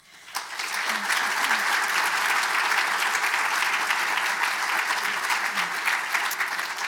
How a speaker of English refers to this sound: I have to say it's the first time I've heard people clap as the speaker steps into the theatre.